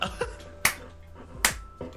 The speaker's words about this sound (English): Okay, I'm gonna clap now. Right. Not on OnlyFans, you're getting this for free.